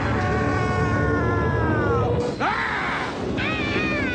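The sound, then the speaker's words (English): Loud, drawn-out villain screams with wavering, sliding pitch, one long cry dipping sharply before another rises, over a dense rumbling background with no words. “And this episode had the best screams. I think every villain had a really great scream several times.”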